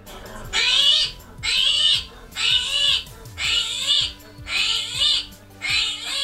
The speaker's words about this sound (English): So congratulations to Amanda and Boynton Middle School Grade 7 for guessing correctly the screaming hairy armadillo. So the screaming hairy armadillo is exactly as it sounds. It's a very hairy armadillo, and it screams when it is handled.